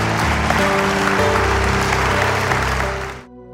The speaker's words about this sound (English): Come on, can we give the word of the Lord a good hand clap together?